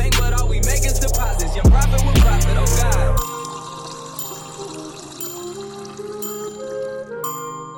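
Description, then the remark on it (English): A low-quality, compressed-sounding rip of a song with vocals: a heavy, bass-laden opening with sharp hits for about three seconds, then a thinner section of sustained tones continuing alone. “this is the SoundCloud rip, because it's got the vocal, right? The quality difference is fucked”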